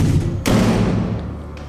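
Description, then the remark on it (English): Two doors slam violently shut in a long stone room: a heavy door slams hard with a booming thud, and a second, much fainter slam follows about a second later, both over a steady low droning hum. “As you kind of stand up, you just hear two doors slam violently shut.”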